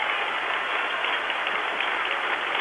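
A steady wash of crowd applause and cheering from Saskatchewan fans for UBC player Brent Malish in his senior year as he checks out of the game, dense and continuous throughout, with no single voice standing out and no breaks in the noise.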